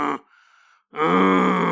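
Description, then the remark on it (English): A person imitates a Bigfoot growl: a short rough burst, a brief breathy pause, then a loud, sustained, gravelly roar that holds steady to the end. “Oh, I just want to do the noise again.”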